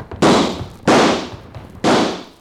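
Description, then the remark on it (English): Three loud gunshots fired at a lamp ring out at uneven intervals, each a sharp crack followed by a rumbling, echoing decay, with no voices in between. “Come on, shoot at the lamp.”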